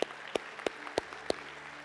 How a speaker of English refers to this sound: I know you're not clapping for me. I know you're clapping for what God is doing through me, okay?